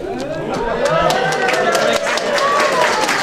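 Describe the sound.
A short round of applause at a Big Finish event for someone who has won Pointless this evening, scattered claps rattling at an uneven pace while voices whoop and chatter loudly over them, lively throughout.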